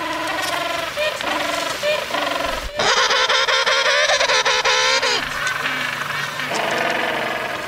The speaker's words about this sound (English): Well, that's braying call. I know they're penguins, but if I had to tell you what kind of penguin, I don't know. They might be like the black-footed penguin, which is sometimes called the jackass penguin from South Africa.